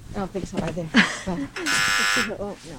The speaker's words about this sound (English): pushes the buzzer at the door under the archway, but it's the height of COVID and we're uninvited guests trying to get in.